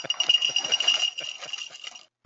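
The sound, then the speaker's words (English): Lucky Charms-inspired cereal poured from its box into a bowl: a steady, crisp rattling patter of many small pieces for about two seconds, then it stops abruptly, followed by a short brief clunk. “I'm going to pour some of it into this handy bowl I have right here.”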